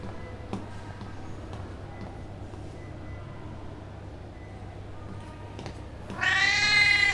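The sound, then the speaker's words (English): A single loud, drawn-out meow from a male cat near the end, about a second long, rising over a steady low hum after several seconds of quiet background rumble with faint clicks. “The cat seems to know where he's going.”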